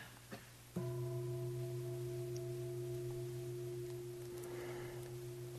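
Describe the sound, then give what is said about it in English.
A ritual bell is struck once with a sharp attack, then rings on in a steady, humming resonance of low and mid tones that barely fades over several seconds. “And as that matures over time, you get the bell.”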